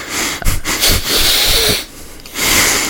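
Someone sniffs wine deeply and repeatedly, long airy inhalations broken by brief pauses, with no talking.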